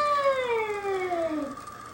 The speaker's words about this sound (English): You know, domesticated house cats, when they're freaked the fuck out, they make some of the craziest noises. Yeah. They do. By the way, this is a bobcat.